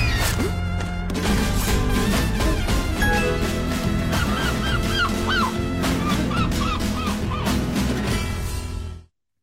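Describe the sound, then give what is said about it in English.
Loud, repeated seagull squawks in a 15-second Visa TV ad, where a seagull steals ice cream, ring out over a busy, steady music bed, the cries clustering in the middle and later stretch before everything cuts off abruptly. “Okay, so the whole point is you're trying to get your ice cream and the seagull comes and steals the ice cream, and then the seagull comes and steals your cash”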